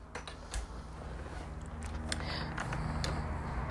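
A door being opened, with several sharp mechanical clicks and a faint creak over a steady low rumble. No one speaks.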